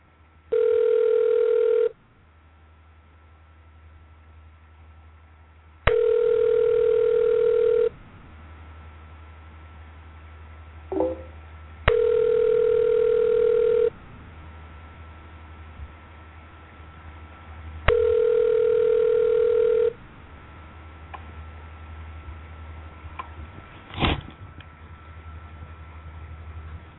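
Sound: telephone ringing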